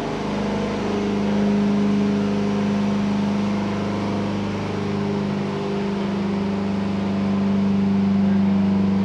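An LLY Duramax diesel truck engine roars steadily under heavy load during a test, loud, with a deep droning rumble and strong low harmonics that hold for the whole stretch without letting up.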